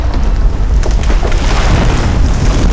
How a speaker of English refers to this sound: In an enormous geyser of dirt, rock, and trees, the park erupted as several massive drill ships surfaced. Lamps and benches heaved up out of the ground and were thrown into neighboring buildings.